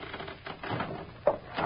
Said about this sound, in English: Nothing but the rafters creaking. Can't you feel the whole building sway when the wind blows? It's that old.